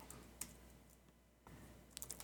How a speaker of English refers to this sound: He's still typing away there.